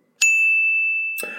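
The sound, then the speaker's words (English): A single bright bell ding marking a correct answer rings out clearly, its pure tone lingering and slowly fading for about a second before a voice begins over its tail. “So maybe Jed could drop in a bell sound here.”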